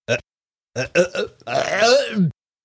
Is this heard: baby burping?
yes